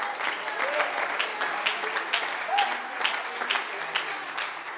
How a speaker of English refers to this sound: If you really believe that, would you clap your hands just for a moment?